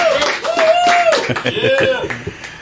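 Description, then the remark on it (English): A live audience at Amedios claps steadily in the evening in a dense, continuous wash of applause, with a bright sustained whistle or cheer rising above it and scattered voices mixed into the crowd noise. “We do have a wonderful crowd here at Amedios this evening”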